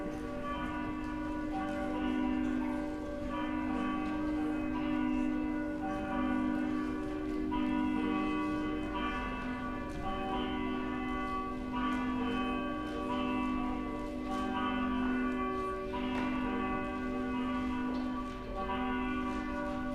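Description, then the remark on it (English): Church bells ring to call the audience to worship at the start of a church service, a dense, overlapping peal with rich sustained tones and repeated strikes layering over one another at a steady, fairly loud level, and no one talking. “Please stand. The bells will call us to worship.”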